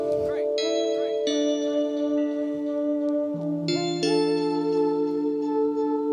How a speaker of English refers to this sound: Here we go. Bells. Great, great, great.